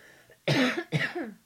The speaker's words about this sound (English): One second. I need to cough massively.